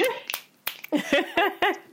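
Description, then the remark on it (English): A series of five or six crisp finger snaps, sharp and evenly spaced, with faint voiced murmuring sounds between them. “Finger snaps.”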